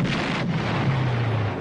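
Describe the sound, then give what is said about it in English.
A dense barrage of movie gunfire blurs into a continuous roaring rumble, with a steady low drone beneath it and no voices. “Oh no, they're shooting!”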